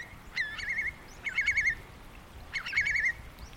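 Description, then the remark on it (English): Oystercatchers, curlews, herring gulls and black-backed gulls call as they are flushed into flight, three bursts of shrill, wavering piping calls separated by short pauses over a low outdoor background. “Here they go. They're flushed. So we've got oyster catchers, curlew, herring gulls, blackback gulls.”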